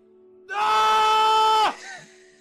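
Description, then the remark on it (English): A person voices the character Leonidas's scream of agony, longing and confusion: a single loud, strained scream, held for just over a second at a steady high pitch before breaking off abruptly, followed by faint background noise. “Bit of agony, longing, confusion within the scream.”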